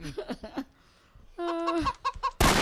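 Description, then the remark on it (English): A chicken clucks in a few quick bursts, pauses, then lets out a longer run of squawking clucks before a sudden loud burst of noise cuts in at the end. “So I just shot a chicken.”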